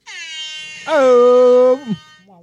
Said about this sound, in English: Also, this is the noise an air horn makes.